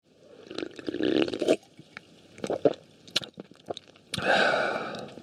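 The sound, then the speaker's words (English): Wet slurping sips of Whispering Pines beer from a can, drawn in short bursts, with soft liquid gurgles and a breathy intake between them, ending in a longer noisy sip; no voices. “Let's take one last sip.”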